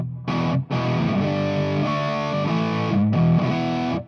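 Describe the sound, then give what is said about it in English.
A distorted electric guitar plays a few sustained, gritty chords through a Tweak Fuzz pedal, with the bass taken out before the clipping, giving a thin, bass-light tone with brief gaps between strums. “On this particular Tweak Fuzz, you can get more of a distortion by simply taking the bass out before it's clipping.”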